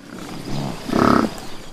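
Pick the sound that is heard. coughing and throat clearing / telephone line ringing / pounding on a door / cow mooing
cow mooing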